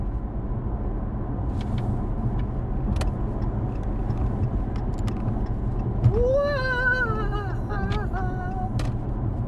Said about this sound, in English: Oh, hit the brakes.